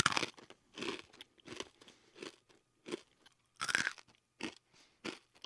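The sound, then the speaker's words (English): Dry crunching of someone biting into and chewing a dry protein cake, with about ten crisp, irregular bites and chews and brief quiet gaps between them, no talking. “A year later, we were all eating 3 protein cakes a day. There was nothing else. Salty, crunchy, and bland.”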